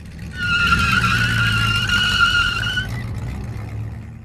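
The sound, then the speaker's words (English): A Stutz car's engine rumbles while tires squeal steadily for a couple of seconds as it turns and pulls in to park on the far side of a parking lot, then the engine keeps running at a low idle. “You park the Stutz on the far side of the parking lot”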